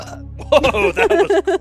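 A long, loud burp rumbling out in a series of rippling pulses for over a second, with nothing else in the background.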